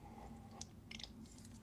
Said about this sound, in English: And for me, taking a sip of water so my throat doesn't dry out.